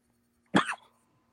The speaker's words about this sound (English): You coughing? You smoke too much weed?